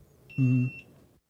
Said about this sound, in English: Beep. I'm hearing beeps. I don't know what that's for. I don't know what it is either.